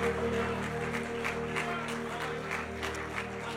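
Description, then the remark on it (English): A church audience claps hands in praise to the Lord in a steady, rhythmic beat over a sustained low musical drone, with no voices standing out. “Let's clap our hands unto the Lord right now.”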